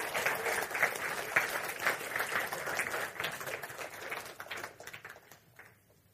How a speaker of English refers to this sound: So let's give a round of applause